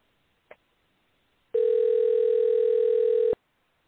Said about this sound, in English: All right, let me give him a call. So y'all bear with the ringing, and hopefully we'll get him on here soon enough.